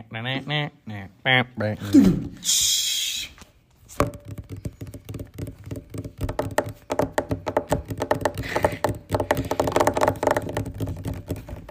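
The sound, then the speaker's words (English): A voice imitates whale calls with a few short, gliding tonal moans and a rising squeal, followed by a hiss and then a long stretch of steady tapping. “Oh, whale noises? I can make those.”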